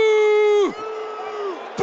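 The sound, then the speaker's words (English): A single voice loudly mimics crowd booing, holding a long, steady 'boo' that drops in pitch at the end, followed by a shorter, wavering boo. “It's the first game, and I could be totally wrong here, but if that's the way Chelsea are going to play, Stamford Bridge, if there was any fans in, they'd be booing. Boo!”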